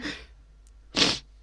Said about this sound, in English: But yeah, I've got so many diamond paintings, and I finally finished one after 2 months, and I just burped.